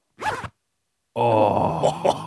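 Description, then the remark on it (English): A clothing zipper is zipped up, closing a pocket with a phone inside, in two strokes: a short quick zip, a pause, then a longer continuous ratcheting zip that ends with a few rough catches. Fairly loud, with no talking. “Let's zip it my right up. Man. Have a listen to this.”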